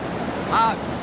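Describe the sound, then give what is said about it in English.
Steady rushing water pours continuously through a theme park flume ride, a dense churning wash that swells briefly, with a faint tonal squeak rising over it midway; part of some 500,000 gallons of treated water cycled continuously and pumped back up to the top. “This is some of the 500,000 gallons of water which cycles continuously here in order to keep the splash in Splash Mountain.”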